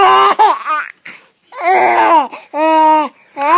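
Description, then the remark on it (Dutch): A baby laughs and babbles happily in several bright, squealing bursts separated by short pauses, fairly loud with no other voices. “Ah, dat klinkt als een vrolijke baby”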